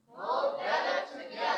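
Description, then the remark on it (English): A large audience at Elevating Life Church shouts "mulbetted together" in unison on a count of three, a loud, sustained burst of many voices lasting under two seconds with a slight swell near the end. “Man, there's a mighty crowd right there. That sounded good.”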